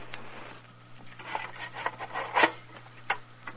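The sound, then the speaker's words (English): Someone lights a dark lantern at a door in an underground passage: a run of dry, scratchy rasps and rubbing scrapes, with one sharper strike partway through, over a steady low hum and no talking. “Just a moment till I light my dark lantern.”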